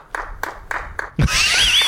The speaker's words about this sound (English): Let's give him a clap for that one.